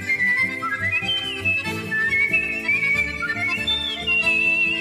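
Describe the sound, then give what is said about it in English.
The current whistling champion, a man, performs a fast, ornate melody with bright gliding notes and trills, loud, over a steady instrumental accompaniment with no talking. “This dude, he's the current whistling champion.”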